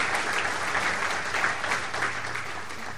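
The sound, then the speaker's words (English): A crowd claps steadily throughout for Joyce Riley, who had spoken earlier that day, a dense, sustained wash of applause from many hands, fairly loud, with no speech over it. “She deserves all of your applause.”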